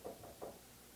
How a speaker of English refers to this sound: And as most preachers and pastors are, when they go into the study and shut the door, the rest of the family knows, don't bother Dad, he's busy right now. And about that time, there was a little rap on the door.